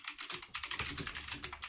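Rapid, clattery keystrokes on a mechanical keyboard, a dense run of sharp clicks in quick irregular rhythm, fairly loud with no voices.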